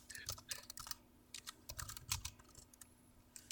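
Rapid, irregular clicking of keys on a computer keyboard, a steady burst of typing with uneven rhythm and a faint background hum, no voices.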